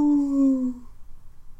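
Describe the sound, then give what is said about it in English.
A pigeon call: one drawn-out, tonal moan that slides slightly downward in pitch for under a second, then gives way to faint, low rustling. “That's a pigeon.”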